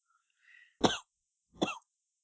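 Two soft, muffled coughs from one person, spaced a little under a second apart, with a faint breathy sound just before the first. No one speaks.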